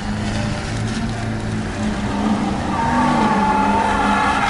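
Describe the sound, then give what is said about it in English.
A car engine revs hard and steadily while tires squeal, a loud, continuous roar that swells slightly louder toward the end, with no one talking. “That's what it sounds like most times around here. There's a lot of that, and there's a lot of the classic car guys.”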